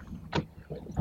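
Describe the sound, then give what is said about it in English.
Water sloshing against a small boat as it moves through water, making a full 360-degree turn, with a brief splashy burst in the middle and low rumbling wind noise throughout. “I've turned the till and we are literally making a 360 degree turn.”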